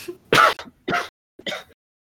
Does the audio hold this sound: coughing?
yes